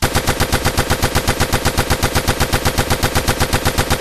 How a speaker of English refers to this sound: Let's get some gunshots.